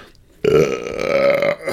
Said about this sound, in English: And burp thoroughly.